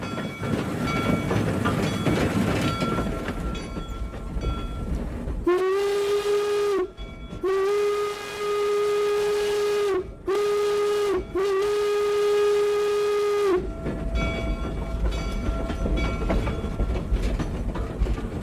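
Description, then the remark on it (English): A steam locomotive at Golden Spike National Historical Park, Promontory Summit in northern Utah, during the steam festival, rumbles along, then sounds its whistle in four loud blasts, two short and two long, before the rolling chug of the train carries on. “To learn more about those two locomotives, I headed north to Promontory Summit and caught up with Ranger Cole Chisam, who is the engineer who drives the two locomotives at the park.”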